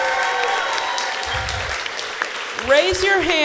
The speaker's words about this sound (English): Again, round of applause for Gateway City Arts.